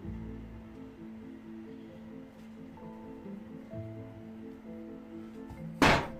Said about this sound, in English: Tyrion, shut the door.